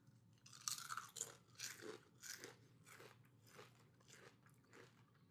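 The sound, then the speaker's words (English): Crunching of Cape Cod kettle-cooked honey Dijon mustard potato chips: a steady series of crisp, crackly bites and chews, about a dozen bursts over several seconds, with no talking. “Crunch Listen in. For that crunch, yeah.”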